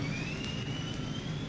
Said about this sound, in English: There's the jet. What's that? It's coming from that long hallway. It's the jet in the hallway.